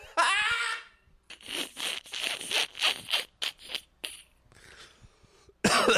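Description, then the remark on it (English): A prolonged coughing fit, set off by laughing with lungs full of fog smoke: a strained, voiced hack opens, then a rapid run of harsh, raspy coughs in uneven bursts, a wheezy breathy stretch, and one more loud cough at the end. “I gotta be careful with my laughing because my lungs are full of fog smoke. I'll just set off a coughing attack.”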